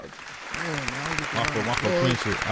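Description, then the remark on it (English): A crowd claps in a steady, dense patter that swells slightly toward the end, welcoming Frenchie of Brick Squad, while a man's voice talks loudly over the applause. “Frenchie, with a round of applause for my man, huh?”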